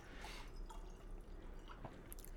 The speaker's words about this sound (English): Gents, a little bit down the glass because I cannot pour that high. No, go down. Here we go. Perfect. Great.